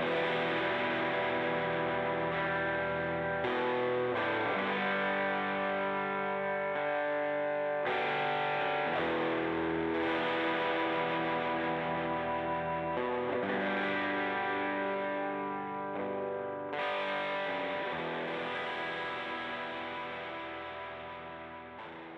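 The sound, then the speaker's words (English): A heavily distorted electric guitar plays a loud, sustained solo passage with thick harmonics, shifting notes every few seconds, alone without any voices. “Next, I added a distorted electric guitar part so it had some power during the epic heavy solo.”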